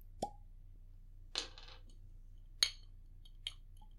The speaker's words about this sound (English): Slow pour. Don't crack our beautiful clear ice balls. Very slow.